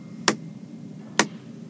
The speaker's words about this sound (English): You want me to do the slow clap now? Yes, I'll take it. You just edit it in.